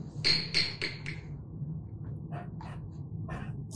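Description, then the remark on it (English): John Fetterman strikes a gavel on the bench while chairing a U.S. Senate subcommittee meeting on Capitol Hill: four quick, sharp wooden knocks with a bright ringing edge, followed by a few softer, scattered taps over a low background hum. “Just him hitting the gavel was a production there.”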